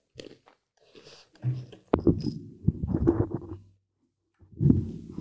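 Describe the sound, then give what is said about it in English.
Crunching as something crisp is bitten with a sharp snap, followed by a few seconds of steady, textured chewing, with quieter mouth sounds before and after. “Oh, that crunch. Crunch is good, man.”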